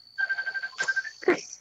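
A phone ringtone from an incoming call from James plays a rapid, pulsing electronic tone over a steady high whine, broken briefly by a couple of short noisy bursts.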